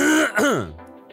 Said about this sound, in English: It's amazing the difference when you clear your throat.